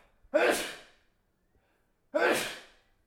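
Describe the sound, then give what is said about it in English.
Two loud sneezes about two seconds apart, each a sharp breathy burst that fades quickly, with quiet in between and no talking. “I'm going to sneeze.”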